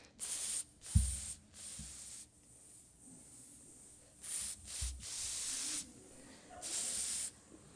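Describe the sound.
In the Dominican Republic, several people hiss back and forth at catcalling hissers in sharp, airy bursts, some short and some drawn out, trading sibilant hisses in an irregular exchange with a few low thumps underneath.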